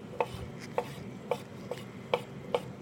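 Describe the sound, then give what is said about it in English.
A knife chops through firm broccoli stems, cutting them into small coin-shaped slices, in six crisp, evenly spaced strikes against a cutting board, each a sharp thunk with a bright edge, heard alone with no talking. “And what we're going to do is just kind of create some little coins out of it.”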